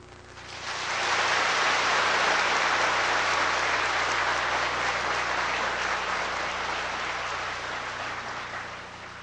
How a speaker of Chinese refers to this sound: 您拍手太大声，我吓了一跳，忘了。